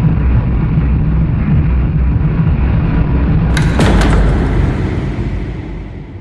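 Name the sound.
door slamming shut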